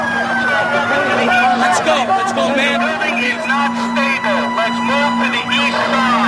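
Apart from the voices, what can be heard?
emergency vehicle sirens wailing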